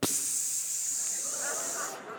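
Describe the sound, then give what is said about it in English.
A voice imitates air hissing out of a flat tire on a new car stopped at a stoplight: one loud, steady, high-pitched hiss lasting about two seconds before cutting off abruptly. “So then I'm at a stoplight, and then I hear a weird noise.”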